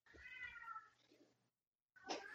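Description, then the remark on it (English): Cats outside: a cat lets out a long, drawn-out meow that trails off, then after a brief pause a short, harsh hiss bursts in; the sounds are fairly quiet, with no talking. “I hear my nuclear cats. Babies, why are you hissing?”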